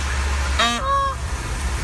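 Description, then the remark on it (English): A man imitates a hen with a single short, nasal honk, rising then flattening, over a steady low background rumble. “That was my impression.”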